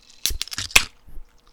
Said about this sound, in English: It's a little ice chew. Ice chew.